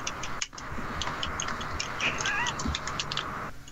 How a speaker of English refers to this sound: And you guys hear a meow.